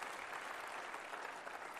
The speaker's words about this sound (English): Somebody put their hands together and give a clap offering of praise to our God.